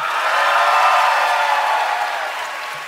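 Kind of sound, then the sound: crowd, audience applause and cheering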